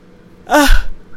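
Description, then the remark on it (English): A short, breathy yawn from a person at work: a quick voiced rise and fall with airy breath, lasting under half a second in otherwise quiet surroundings. “Do you hear me yawning?”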